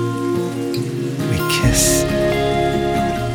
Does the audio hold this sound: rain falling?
yes